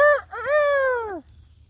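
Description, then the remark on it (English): A man's voice imitates a wolf howl: a brief high yelp, then a longer sustained wail that rises slightly and slides downward before cutting off, loud and alone with no talking. “I know I sound like a real wolf.”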